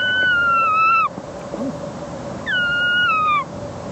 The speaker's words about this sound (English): Let's hear more muntjac. Muntjac buck can't resist the squeak.